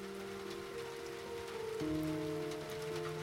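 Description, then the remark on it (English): Steady rain falls continuously in a dense, even hiss, with a low sustained hum of shifting tones running underneath and no voices. “The rain steadily rinsed the creature as the sheriff asked Susan what she wanted to do.”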